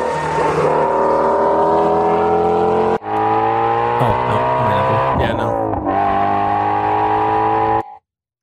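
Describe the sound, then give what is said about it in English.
A supercharged sports car with a manual transmission revs loudly, its pitch climbing and briefly dropping at a couple of gear changes before it cuts off abruptly. “I'm leaning Mustang. I was gonna say the same thing.”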